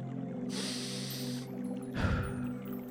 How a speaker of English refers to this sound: But anyway, let me do some deep breathing.